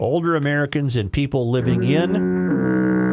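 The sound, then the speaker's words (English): A voice mimics a foghorn with a low, buzzing, drawn-out honk that wavers, then settles into a steady sustained drone, loud, with no other sounds around it. “There's a new word. Foghorn that”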